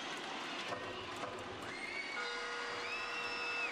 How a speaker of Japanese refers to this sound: そして試合終了のブザーが鳴り、ファンから大きな歓声が送られました。